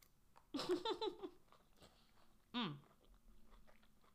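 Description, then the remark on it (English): A person chewing shrimp during a snack break: a burst of wet, smacking mouth noises, a short pause, then one more brief chew with a murmured hum, all fairly quiet against a still background. “I hope y'all can't hear me chewing.”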